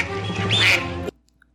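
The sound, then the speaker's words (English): A single loud, raspy duck quack sound effect stretched over about a second, nasal and buzzy, cutting off abruptly into near silence. No one speaks. “Next up, we got Oregon Ducks.”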